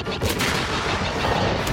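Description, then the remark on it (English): Starfighter weapons fire at a reactor's power regulator on the north tower and its central matrix, a burst of loud, sharp blasts over a dense, steady roar, with a few harder cracks standing out early and at the very end. No voices. “Steady. Fire!”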